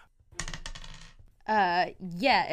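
Two eight-sided dice, rolled for lightning damage in a tabletop role-playing game, rattle and clatter across a table in a quick burst of sharp clicks lasting under a second, followed by a voice making drawn-out exclamations.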